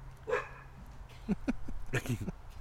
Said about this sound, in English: Never mind the barking dog backgrounds.